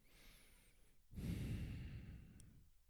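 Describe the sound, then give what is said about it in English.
A slow, deep breath is drawn in softly, then released in a long, airy exhale, quiet with no talking, as part of a meditative breathing practice. “So breathe it in and then feel like it's being burnt up, transformed, alchemized, and then on the exhale, breathing out kindness, compassion, love, healing.”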